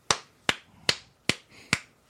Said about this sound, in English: That's what the people do on the airplane. A slow clap.